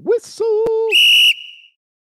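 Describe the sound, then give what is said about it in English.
A short segment-transition sound-effect sting: a swooping, then steady low tone with a quick thump, followed by a loud, shrill whistle blast held about a third of a second before fading out. No talking. “So Big Ten West football coming up right after the whistle.”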